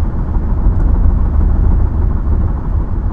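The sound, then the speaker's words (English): A loud, steady low rumble of car tires rolling over a rough patch of road pavement while driving, a constant road roar heard from inside the car with no talking. “We don't have a tire going flat, do we? Suck if we did. I'm going to try to get us through this patch.”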